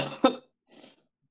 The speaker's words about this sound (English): And we have no problem covering talking for you while you take care of your cough.